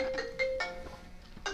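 A phone ringtone plays a quick run of bright electronic beeping notes in short pulses, moderately loud, with no one speaking over it.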